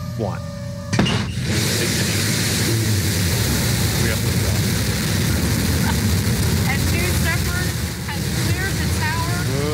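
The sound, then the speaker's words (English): Jeff Bezos's rocket lifts off into space: its engine roars to life with a sudden burst, then holds a loud, dense, rumbling blast throughout, with faint voices rising over the din. “Yeah, here's the liftoff.”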